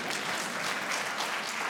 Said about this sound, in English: Thank you for those applause, right?